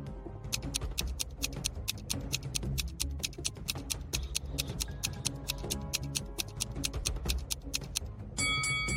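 A countdown timer for a brain teaser ticks in a steady, rapid rhythm over a low, droning musical bed, each sharp click evenly spaced, ending with a brief bright tonal chime as the time runs out.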